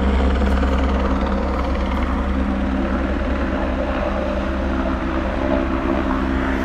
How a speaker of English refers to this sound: It's trying to see where it's gone. Oh yeah, it's trying to land somewhere. I'm not sure where. It's not a... looks like it's a private helicopter. In the minute, it's hovering over a highway.